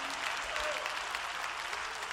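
A church audience claps their hands to praise God, a dense, steady wash of many overlapping claps with no single rhythm, holding at a fairly even loudness throughout.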